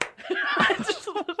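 A single sharp clap at the start that knocks a pair of headphones flying, followed by a stretch of voiced laughter and snickering that rises and falls in short bursts.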